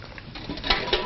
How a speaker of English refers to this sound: Next day in the kitchen, Clayton watches Claire pump water into a basin to wash dishes.